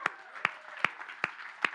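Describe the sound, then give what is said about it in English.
Sparse, scattered applause from an audience: about five sharp claps at a steady, unhurried pace, over a low background murmur. “Y'all must not like clapping for yourselves.”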